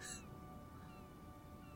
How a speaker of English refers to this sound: Including that seagull. Especially the seagull.